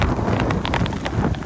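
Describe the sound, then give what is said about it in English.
Strong wind from a fierce fall storm on the north shore roars in steady gusts, buffeting loudly and turning rain sideways, with brief sharp crackles and bursts scattered through the blustery noise; no one speaks. “Powerful wind gusts turned rain sideways.”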